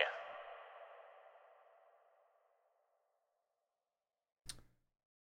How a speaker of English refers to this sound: Wait, I need some reverb. Money.